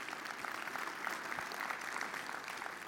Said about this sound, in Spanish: Un aplauso a Dios por ello.